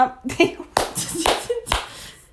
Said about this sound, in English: Are you clapping? Oh. Now we're getting loud. That's too loud now.